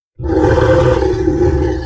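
A chorus of Morrowdin creature roars erupts suddenly from behind and holds, deep, layered and loud, as if several large beasts bellow together, with no speech.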